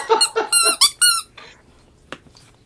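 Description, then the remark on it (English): A rubber chicken squeaks in a quick series of about five loud, high, wheezy honks, then trails off into fainter squeals with a brief click near the end. “Besides the fact that you have weird obsessions with rubber chickens.”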